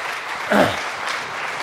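An audience claps in a steady, dense patter of applause for under two seconds, with a short vocal whoop rising briefly above the clapping partway through.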